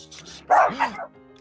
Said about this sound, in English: We have a dog. We have a dog on stream.